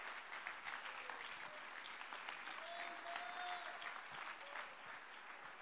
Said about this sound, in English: I wish somebody would clap right now.